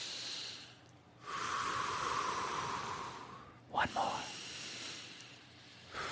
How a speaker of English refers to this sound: Let's take three deep breaths. All right. To center ourselves and get ready for this odyssey we're about to do.